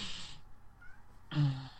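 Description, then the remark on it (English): A male cat lets out a short, whiny meow, fairly clear, crying to be let outside, with bursts of steady background hiss around it and no one speaking. “I have to let the cat out so he'll stop crying at me.”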